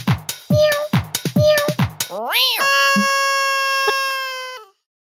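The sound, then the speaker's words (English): A played sound clip of several cats meowing: several quick, choppy meows in a rapid run, then a rising-and-falling meow and a long, drawn-out yowl, all loud. “Play the cat party. Cat party.”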